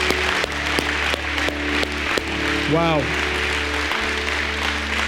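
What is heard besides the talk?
church audience clapping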